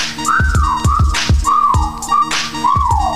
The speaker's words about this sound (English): Okay, time to whistle at her. Hey, girl, you made my whistle blow.